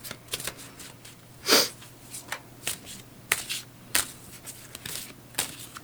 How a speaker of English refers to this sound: Can our guests at home hear? Possibly. The cards I'm shuffling.